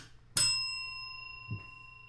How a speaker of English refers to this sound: I demand a ding. I'll give you the bell. You can ding it yourself.